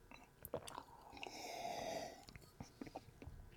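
Quiet mouth sounds as someone sips Samuel Adams Reunion IPA beer: a short slurping sip drawn in through the lips, followed by faint smacking and swallowing noises. No one speaks.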